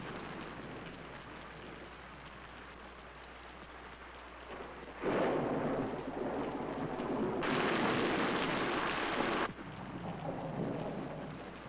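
Steady rain hisses throughout, swelling heavier partway in as thunder rumbles and rolls, with a louder stretch of downpour before easing slightly. No voices are heard.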